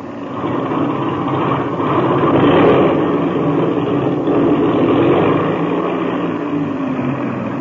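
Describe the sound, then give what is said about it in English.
A steady engine drone fills the whole stretch, swelling louder twice as the engine is run up to check it is turning over, then easing back, with no one speaking. “I'll run up the engine to be sure it's turning over okay.”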